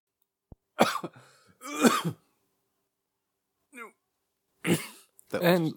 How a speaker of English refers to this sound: Are you okay? Are you okay? This is a Cough of Glory in action here, folks.